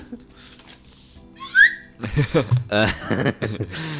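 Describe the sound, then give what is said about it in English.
A quick upward slide whistle glide rings out loud, hitting the microphone, followed by people talking and chuckling over one another. “Yeah, I just hit the mic again myself with the slide whistle.”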